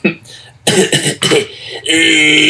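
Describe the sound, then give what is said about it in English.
A man coughs in several harsh, throaty bursts, ending in a drawn-out, raspy hack. No one speaks. “Excuse me, could you cover your mouth when you cough, sir?”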